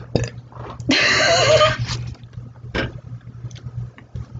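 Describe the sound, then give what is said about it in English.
A single loud, rough burp erupts and lasts about a second, followed by faint shuffling noises over a steady low electrical hum. “I burp, hold on.”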